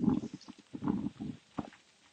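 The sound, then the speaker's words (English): Stones being kicked and scuffed along the ground outdoors in horrible weather, making a string of irregular clattering, scraping knocks over a couple of seconds, with no voices. “I'm just doing some kicking.”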